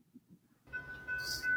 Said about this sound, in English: I think you will hear a little bit of a train here. That's all good. I'm working remotely today out of Florida.